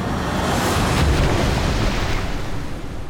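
Ocean waves crash on the shore in a loud, steady roar of churning surf that fills the whole stretch without letting up, with no voices.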